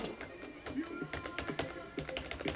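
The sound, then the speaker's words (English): Rapid, sharp clicking of buckling-spring mechanical keyboard keys, each giving a click-clack on the way down and on the way up, a steady run of bright clacks like fast typing, with a faint murmur of voice underneath. “So what you actually hear when you press on them is a click-clack on the way down and on the way up.”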